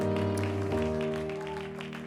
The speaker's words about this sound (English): Come on, do y'all believe that? Would you stand on your feet and clap your hands if you believe it? Come on, do you believe it?